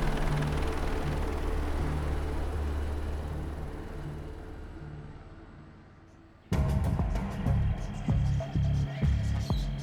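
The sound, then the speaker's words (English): A steady low drone of helicopters landing on a beach, with broad rushing noise, slowly fades, then cuts abruptly to a louder, busier mix of droning tones and thumping bursts. “What is that? Helicopters? They're all landing on the beach.”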